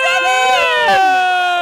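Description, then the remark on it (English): A loud alarm siren effect marking a prize ball draw: a bright, buzzy tone rich in overtones that wavers, slides downward midway, then holds a steady pitch for the rest of its under-two-second run. “Alarm's going around.”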